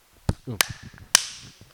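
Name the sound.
single hand clap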